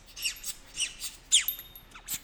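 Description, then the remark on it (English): A rubber ducky used as a trivia-show buzzer squeaks in a quick, uneven series of short, high-pitched honks, five or six in all, with one louder squeeze partway through and no talking. “I was struggling with my little rubber ducky.”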